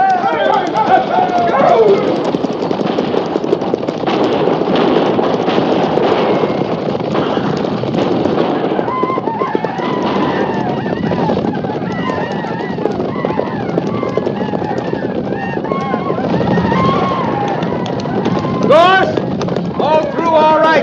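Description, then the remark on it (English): A loud, continuous rush of many horses galloping together in a cavalry charge to ride through to the wagons, hoofbeats blurring into a heavy rumble with wind-like noise and indistinct shouting voices mixed in throughout. “Stay low in the saddle, and we'll ride straight through.”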